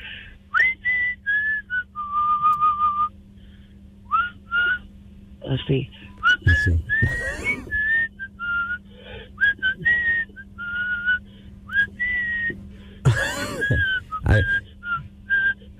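Someone whistles a slow, tuneful rock song melody, the pure tone gliding between sustained notes in clear phrases, with a few breathy noises and brief voice sounds breaking in between.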